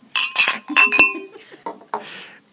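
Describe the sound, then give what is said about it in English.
Several glasses clink together in a toast at Crystal Springs Brewing Company, a quick flurry of bright, ringing taps, the tones lingering briefly before softer clatter and faint murmuring voices follow. “So a good cheers to them.”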